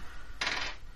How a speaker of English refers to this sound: So what, roll me a d10 on a 1 or 2, you miss him.